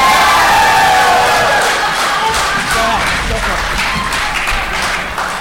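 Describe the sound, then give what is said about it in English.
A crowd roars a drawn-out Auburn "War Eagle" battle cry, many voices shouting together loudly and steadily for several seconds, with scattered cheers and some clapping mixed into the din. “Did I hear a war eagle?”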